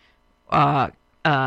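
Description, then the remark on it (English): A person sneezes twice in quick succession, each a loud, voiced burst, separated by a short pause. “Gesundheit.”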